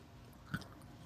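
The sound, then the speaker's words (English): One short, crisp crunch of someone chewing crunchy French vanilla almond granola, Great Value brand, a single bite standing out briefly over a low, steady background murmur, with no talking. “is eating French vanilla.”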